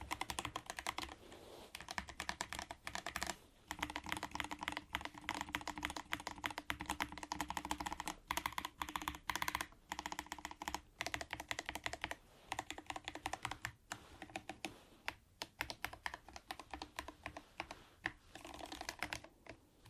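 Rapid, continuous typing on a computer keyboard, dense keystrokes clattering in a fast steady stream, with a few brief pauses and no talking.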